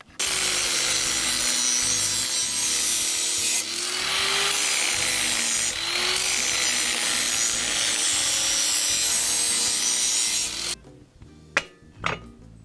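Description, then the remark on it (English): A metal file rasps steadily against a lawnmower blade in continuous back-and-forth strokes, filing off material so the blade will be level, loud, for about ten seconds before stopping, followed by a few light clinks and taps. “Just put this on here, let it settle, and that's showing us that we have to take off more material here than there, so it'll be level and spin nicely.”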